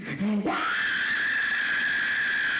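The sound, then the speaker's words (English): A person lets out a loud, shrill, sustained scream after a brief low vocal lead-in, holding a piercing high pitch steadily for about two seconds, like an imitated horror-movie shriek. “So like a murderous scream?”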